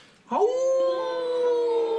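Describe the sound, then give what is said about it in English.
A distant wolf lets out one long howl, sweeping upward at the start and then holding a steady, clear note to the end, with no other sounds around it; at night under a full moon, with many wolves in the area. “Very distant away, but there's a lot of wolves in the area.”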